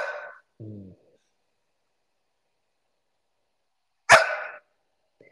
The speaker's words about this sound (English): Oh, you got to stop barking at me.